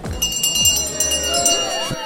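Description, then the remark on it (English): A last call bell rings with rapid, repeated strikes and a bright, sustained metallic tone, over a steady murmur of crowd chatter. “So that is the last call bell”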